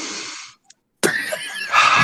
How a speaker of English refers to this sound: Now, I am going to go ahead and start off with a little bit of breathing, just so that we get into the right mode.